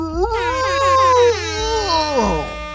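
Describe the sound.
A voice lets out a drawn-out, wavering ghoulish moan imitating the zombie noise in a movie, holding a steady wail for a couple of seconds before sliding down in pitch and trailing off.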